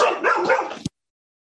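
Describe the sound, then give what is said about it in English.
A dog barks and yips in a quick, continuous burst lasting under a second, loud, then cuts off abruptly into silence. “He had to go on mute because his dog was barking up a storm.”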